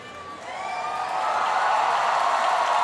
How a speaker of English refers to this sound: That wonderful cheer is because the house lights just went off. There they are.